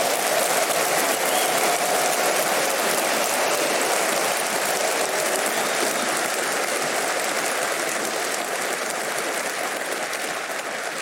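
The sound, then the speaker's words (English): A church audience claps for God in sustained, dense applause that stays strong and steady for about eleven seconds, easing only slightly at the end, with no voices standing out. “Come on, give God a good hand clap off.”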